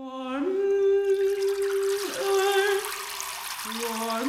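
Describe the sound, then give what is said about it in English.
A steady musical tone dips and slides in pitch over a wash of splashing, trickling water as people play water like an instrument, continuous throughout. “of water and people singing about water, people playing water.”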